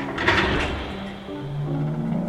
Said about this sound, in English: It's a good place to start. It's the one unknown variable we can investigate right now. I'll open the door.